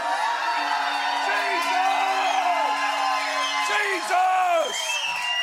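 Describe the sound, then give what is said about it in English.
A large crowd screams and yells together for Jesus after a count to three, in a sustained, loud roar of many overlapping voices, with rising and falling pitches, swelling near the end before fading slightly. “Anybody like to scream? If you don't like screaming, man, close your ears.”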